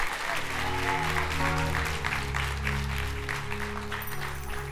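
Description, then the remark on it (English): An audience claps for Jesus in a steady, dense wash of applause, loud and continuous throughout, with sustained low musical tones humming underneath. “Clap for Jesus.”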